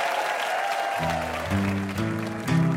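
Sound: audience applause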